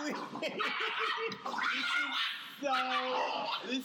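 A dog yips and whimpers in a steady string of short, high whines and barks, fairly loud, with a longer tonal whine near the end.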